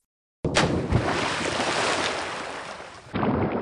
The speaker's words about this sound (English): Yeah, we got to throw our anchor off the rowboat boat here.